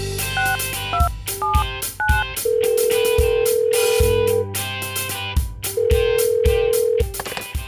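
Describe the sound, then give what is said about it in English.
A quick run of electronic keypad tones as a telephone number is dialed to call a friend, followed by two long, steady ringback tones on the line. No one speaks. “Get Ben on the phone right okay, now. Okay, let's call him.”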